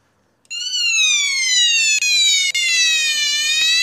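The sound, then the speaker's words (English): A loud, shrill electronic alarm siren from a battery-powered flashlight starts abruptly and holds a steady piercing tone, its pitch sliding slowly downward, with a couple of brief dropouts as it blares. “I actually got a battery-powered alarm thing.”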